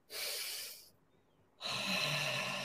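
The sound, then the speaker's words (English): A slow, deep breath drawn in through the nose for four seconds as a breathing exercise, airy, followed by a short pause and then another long, breathy rush of air. “4 seconds in through the nose.”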